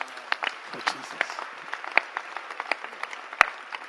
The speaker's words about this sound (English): Clap your hands.